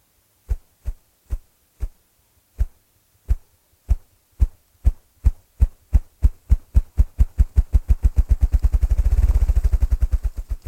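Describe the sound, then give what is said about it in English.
A partridge drums its wings: deep, muffled thumps begin slow and evenly spaced, then quicken steadily into a rapid, throbbing roll that swells and trails off. No voices are heard. “The drumming of the partridge.”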